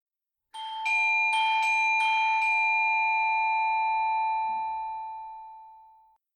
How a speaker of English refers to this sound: All right, ring the doorbell.